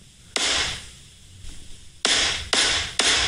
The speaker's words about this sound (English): I don't like that. I don't like the silent gavel. So I want one that makes a noise.